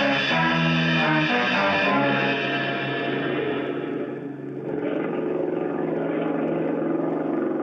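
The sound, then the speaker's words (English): An outboard motor runs steadily, a loud buzzing drone rich in harmonics, briefly dipping in pitch and volume midway before settling back into its even hum. No one speaks. “Oh, better sit here where we can hear that outboard motor. It might cut off.”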